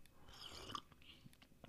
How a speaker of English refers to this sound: Sipping some coffee.